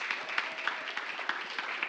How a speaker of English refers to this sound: And we all just want to clap and thank God for our board members.